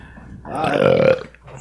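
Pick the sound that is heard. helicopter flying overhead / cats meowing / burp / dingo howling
burp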